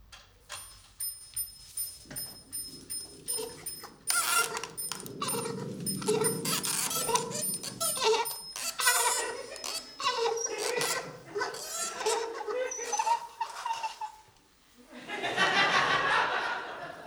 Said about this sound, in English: It's bad enough that we're reminded of their existence every hour when the enormous mechanical clock strikes, featuring its chime that sounds like a laugh and is a mechanical automation of a dancing man. Listen, here it comes now.